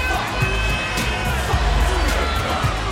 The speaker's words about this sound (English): Listen to the chant from the fans. A near capacity crowd here on the University of Houston campus at the Fertitta Center